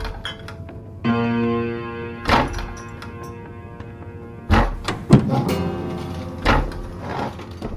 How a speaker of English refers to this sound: They've all started banging their tables.